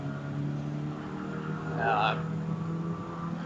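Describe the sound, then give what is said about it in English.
A race car engine in third gear drones steadily as it accelerates uphill through a cutting on a race circuit, its tone holding firm with a brief, louder rising whine around the middle before settling back to a constant roar. “Through the cutting up here, keep it in third, run it out.”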